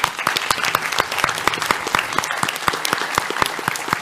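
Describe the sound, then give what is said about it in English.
Steady applause from a small group, a dense patter of individual claps at an even volume, continuing without pause. “Round of applause.”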